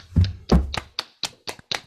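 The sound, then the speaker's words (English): One person claps seven times in a steady rhythm, about four claps per second. The first two are fuller and heavier, and the later ones are sharper and crisper, with no talking. “I'd like to clap.”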